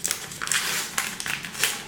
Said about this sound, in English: Let's go ahead and open this up. So if you're on YouTube, you can watch this. I'm going to go ahead and make sure I don't clip any of the cards with my scissors. And then open it up.